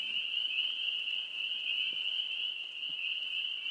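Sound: crickets chirping at night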